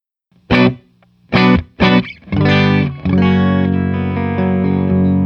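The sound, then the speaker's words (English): A Telecaster electric guitar played through effects, with a thick, distorted, powerful tone, plays three short stabbed chords, then strums a big sustained chord that rings out loudly with no one speaking. “really good, really powerful, and not bright and brittle like a lot of tellies can be”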